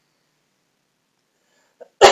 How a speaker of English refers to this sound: Do you want to cough into the mic? Nope. That's my move on you. Yep, you guys, I'm sick again. Can't shake it. I can't shake it.